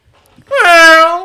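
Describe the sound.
A voice imitates a Formula One car with one loud, sustained nasal whine lasting about half a second. It swoops up briefly, then holds a steady pitch after a quiet start.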